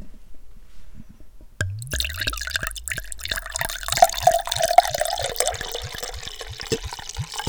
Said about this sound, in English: ASMR wine pour.